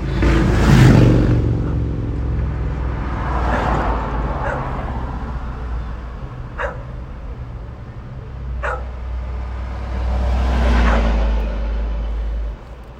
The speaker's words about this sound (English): There's just a lot of traffic. Hold on. Damn, that's a quiet ass car. Thought that was a Prius.